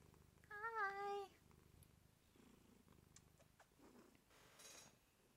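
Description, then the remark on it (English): A cat named Melody purrs steadily and softly, a low rhythmic rumble throughout, with a brief chirping meow near the start and a few faint clicks in the background. “She's purring. Can you purr in the microphone?”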